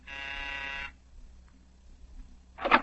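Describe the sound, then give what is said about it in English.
A doorbell buzzer at the manager's door of a house gives one harsh, steady electric buzz lasting almost a second, then cuts off into quiet before a short, noisy rattle near the end. “Oh, here, this is door. It says, manager. I'm going to ring.”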